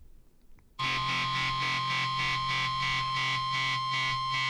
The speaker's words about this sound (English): But this next one I'm going to play, this is a cover that was a hidden track